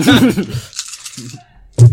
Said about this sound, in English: Roll the two dice first.